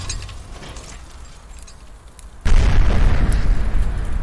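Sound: car explosion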